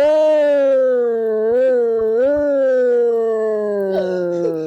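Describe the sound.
A person's voice imitates a motorcycle police siren with one long, loud wail that wavers up and down and slowly sinks in pitch over several seconds.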